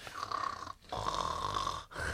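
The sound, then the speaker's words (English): A voice imitates a dad's loud snoring: two long, rasping snore-like breaths separated by a brief gap, continuous, with a buzzing tone throughout. “So yeah, he's gonna put it away and then go wake Gwen up at the end of his shift and then clonk out and do the dad snore.”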